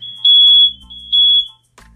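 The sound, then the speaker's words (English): A loud, high-pitched fire alarm sounds in two piercing beeps, each lasting about half a second, then cuts off abruptly, with a low hum underneath. “Wow, we just had a brief fire alarm.”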